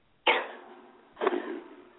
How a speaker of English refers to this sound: I'm sorry, I had to sneeze right when you asked me that.